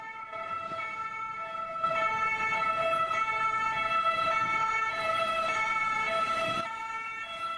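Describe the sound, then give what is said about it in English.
An ambulance siren blares steadily and loudly for several seconds, its bright, harmonic wail cycling between tones, with no voices. “And the noise for the ambulance-chasing law firm of the year, Quindel, is...”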